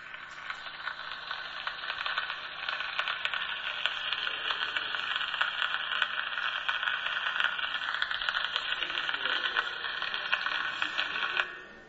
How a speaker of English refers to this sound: What do you think? A gramophone record, sounds like it, doesn't it? It's actually rain on an umbrella. That's what that was.